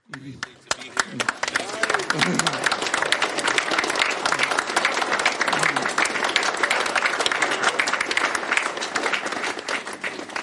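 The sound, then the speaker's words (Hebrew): An audience breaks into sustained applause, many hands clapping densely and steadily for about ten seconds, a loud, even crackle that swells quickly after a brief start and holds. “Eu queria que os amigos batessem palmas”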